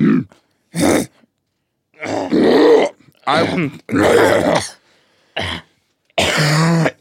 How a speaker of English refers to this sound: Oh, I had the hiccups.